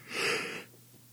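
A single breathy yawn, close and fairly loud, swelling for about half a second before trailing off into quiet.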